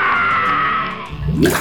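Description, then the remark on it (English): Steady rushing, churning water fills the moment, then swells into a deep, bubbling gurgle near the end, fairly loud, with no voices, as Ptolemy, swimming across a river in heavy golden armor, drowns. “But his golden armor was so heavy that he drowned.”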